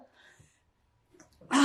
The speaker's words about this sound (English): I gotta sneeze. Bless you. Bless you!